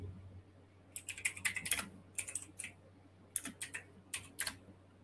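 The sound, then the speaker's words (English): Crisp typing of a message on a computer keyboard in quick bursts of clicking keystrokes, separated by short pauses, over a faint low hum with no talking. “Let me message Orlando to see where he is.”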